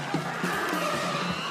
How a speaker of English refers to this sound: And a circus fire!